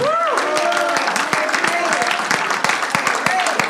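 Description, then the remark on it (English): An audience claps hands to the Lord in a dense, sustained burst of applause, with voices shouting and singing out over the clapping throughout. “One more time, we clap our hands to the Lord, and then you can be dismissed.”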